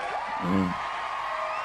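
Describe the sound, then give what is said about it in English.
A canned burst of crowd applause and cheering added as an applause break, a steady wash of clapping noise with a short low whoop rising out of it near the start, lasting under two seconds. “Oh, you wanted do we have an applause break that we can add in?”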